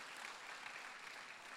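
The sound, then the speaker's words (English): An audience claps together during a sermon, responding to the preacher's call to clap, in a steady, dense wash of applause, many hands blending into an even, sustained patter with no voices standing out. “Come on, clap if you believe that it's for the whomsoever's of this world.”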